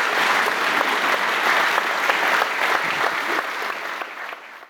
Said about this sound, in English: But I just want to say, once again, thanks a lot to the panel. So why don't we just give them a huge round of applause.